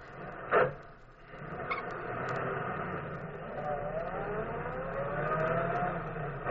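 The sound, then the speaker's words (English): A sharp click leads into a car engine starting up, then a steady rumbling idle whose pitch climbs as the motor revs, fairly loud throughout, with no one talking. “Now I'll start the car.”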